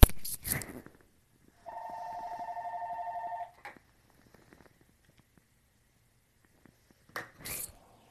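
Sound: telephone ringing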